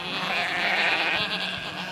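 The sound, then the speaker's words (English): A sheep bleats in one long, wavering cry that holds steady for about two seconds, fairly loud, with no talking over it; it is one of the sheep shown walking in circles on Chinese government television. “So they're like showing these people, these sheep walking in circles.”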